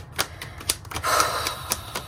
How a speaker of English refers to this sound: Oh wow, we got a lot coming forward here. This is my last shuffle.